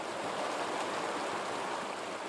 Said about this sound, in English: It flows down the mountainside into Maggie Valley and forms Jonathan Creek.